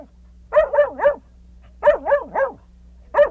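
A dog barks in quick bursts: a run of three barks, a pause, another three, then a single bark, loud with nothing else around.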